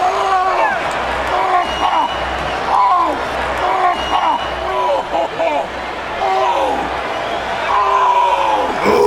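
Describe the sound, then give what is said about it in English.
A wrestler repeatedly groans and cries out in pain, selling a broken ankle after a wrestling match, his strained yells rising and falling over the steady roar of a large arena crowd for several seconds. “this is where we get our grunt of the night as well. Big Show's selling of his broken ankle”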